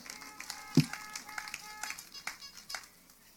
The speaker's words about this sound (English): Well, that's the funnest horn I've ever heard in my life. Please do it again. Yes. Those of you online, you don't know this, but somebody brought a bicycle horn. I love it.